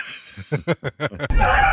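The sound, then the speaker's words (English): A man lets out a string of short, rhythmic vocal cries, then a sudden loud slam as his hand is slammed in a door, followed by harsh, strained screaming. “This one is his hand getting slammed at first.”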